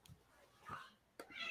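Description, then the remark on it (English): A faint, short meow from a female tortoiseshell cat sounds in the middle, followed by a second higher-pitched mew near the end, both quiet against a low background. “That was the cat. I thought I heard a cat.”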